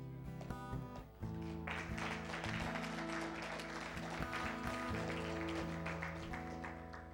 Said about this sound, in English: And so you can clap for that. And that's good. You should. Absolutely.